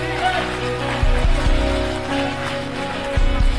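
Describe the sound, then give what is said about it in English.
A crowd at a service claps and applauds steadily for a few seconds in a five-second hand clap, a dense, even wash of hand clapping with a low musical tone and some voices underneath. “Come on, give him a 5-second hand clap.”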